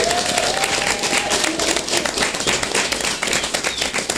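A crowd applauds steadily for A Shop Called Quest, hosts of the event, a dense wash of overlapping claps that holds at an even, loud level for the whole stretch with no voices standing out.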